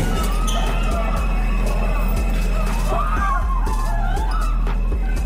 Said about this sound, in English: All right, that screaming that you hear in the background is a crowd of people leaving a New York City subway. The N train hit by what they say might have been an explosion from a bomb.